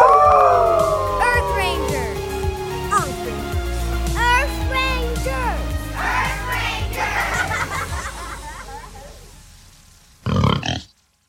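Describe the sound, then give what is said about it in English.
Several people howl together like wolves, long voices sliding downward and overlapping loudly for a few seconds, then fading into scattered higher yelps before a short burst of noise at the end. “Let's all howl together.”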